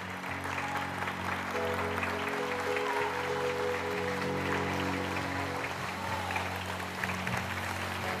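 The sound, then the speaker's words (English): A church audience gives the Lord a clap offering, clapping steadily for several seconds, a dense, even wash of applause over sustained low organ-like chords. “Come on, give the Lord a clap offering in this house.”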